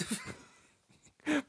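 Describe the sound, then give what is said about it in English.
Wheezing breaths: a raspy, whistling breath at the start, a quieter gap, then a louder, longer wheezy breath near the end, with no talking. “I have to apologize for this wheeze that everyone's hearing all night tonight.”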